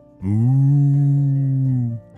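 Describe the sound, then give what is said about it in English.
A child's voice imitates a cow with a single long, steady moo, held for nearly two seconds, loud with no other sounds around it. “… was impressing the cows with his very good mooing.”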